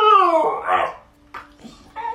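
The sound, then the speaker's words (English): A dog lets out a drawn-out, wavering howl that bends up and down in pitch like grumbling speech, protesting against going for a walk while a woman pleads with him and shows him his harness, followed by a few shorter, softer vocal yowls. “he is obviously not interested in the walk, and as she continues to plead with him and show him his harness, he continues to protest in what sounds more and more like actual words.”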